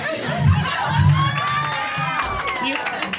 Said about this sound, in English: Thank you for the three people that clapped. Thank you so much.